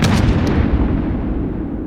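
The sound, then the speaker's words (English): Heavy explosions from bombs and artillery shells tearing apart peaceful fields at dawn, just after 3 a.m., a loud continuous rumbling roar with sharp blasts at the start, deep low booms rolling on and slowly fading in brightness, with no voices. “The peaceful fields are torn apart by exploding bombs and shells.”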